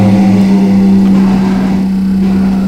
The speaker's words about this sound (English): Oh, I hope this month this fucking computer isn't going to do a helicopter again. You hear it taking off? It's a motorcycle. Yeah, I don't know why it's doing that.